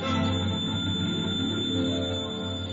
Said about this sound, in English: And the telephone's ringing.